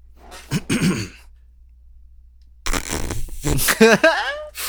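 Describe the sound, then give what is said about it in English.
A short, tight, dry fart with an airy, breathy texture, followed after a pause by a burst of voices reacting. “That was tight. It's a tight one. That was a tight very one. Airy. Dry.”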